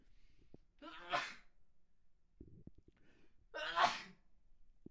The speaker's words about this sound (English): Man, I am fighting back a sneeze right now.